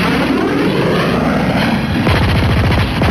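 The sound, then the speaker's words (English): A steady propeller-engine drone of a model plane rises in pitch, then a rapid burst of machine-gun fire rattles over it as the plane, positioned right behind another plane, opens fire, loud, with no talking. “I got my plane in position right behind one of theirs. And I opened fire.”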